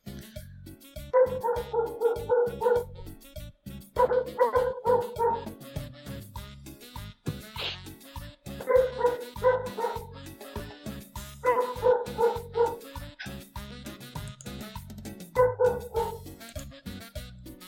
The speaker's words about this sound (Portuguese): Encanado com alguma coisa aí. É seu cachorro? Não, é da vizinha aqui em frente.